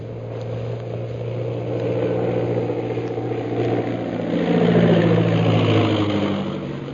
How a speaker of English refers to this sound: As the scout plane circles in for a landing on the parade ground, Bluger, accompanied by General Lin Pu and Shanghai Lil, rushes out of the castle.